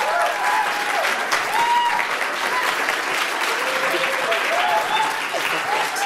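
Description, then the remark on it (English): Sustained applause from a sizable audience for a speaker who has just finished a talk, steady and fairly loud throughout, with some voices faintly mixed in beneath the clapping. “Tried to get her to stay up there and accept that applause from all of you, but she was happy to be done with that thing, I think.”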